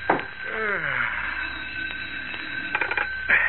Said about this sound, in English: Sheriff Johnson yawns and reaches for the ringing telephone on his desk